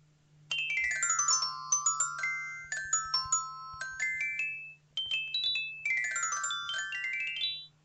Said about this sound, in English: Little known fact, that's actually Rocket Raccoon's ringtone.